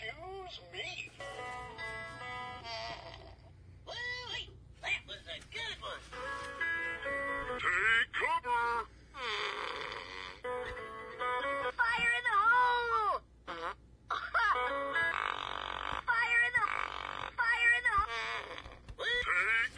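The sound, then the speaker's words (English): A toy with four animals on it plays fart sounds from its touch pad: a run of buzzy, drawn-out farts one after another with short gaps, their pitch bending and wobbling for about twenty seconds. “So if you're looking, there's four animals on here, and they have a touch pad where you can touch it, and it makes a fart sound.”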